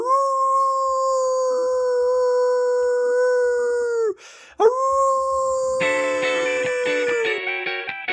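Long, steady wolf howls, loud: one sustained howl, a brief break, then another, joined near the end by several overlapping higher howls in a chorus. No talking.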